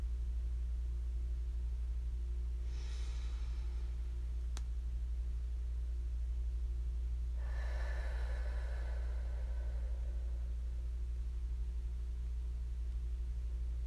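A slow, deep breath taken during a meditation: a short airy inhale, a pause, then a longer, fuller exhale pushed out of the mouth, over a steady low hum with no talking.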